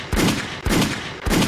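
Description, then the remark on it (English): Three loud gunshot sound effects fire at an even, steady pace, each a sharp booming crack whose echo fills the gap before the next. No voices. “Gunshots for my man.”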